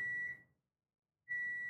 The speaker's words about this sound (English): Oh, that was a weird beeping, huh? Your beeping machine is going off.